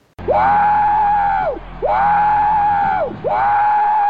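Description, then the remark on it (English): A voice imitates a train whistle with three loud, sustained, high hoots, each held steady for over a second and then sliding down in pitch at the end, with brief gaps between them. “He sounds like a big choo-choo train.”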